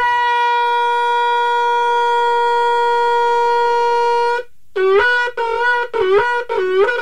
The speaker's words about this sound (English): The howling sound of the shofar causes us to tremble, to shake us up a little bit, and bring us back to the state of the unblemished soul.